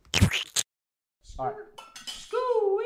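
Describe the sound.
Glasses clink together in a toast celebrating one year, a couple of bright chimes up front, followed after a short pause by excited voices; the drinks are gin mixed with Bang energy drink.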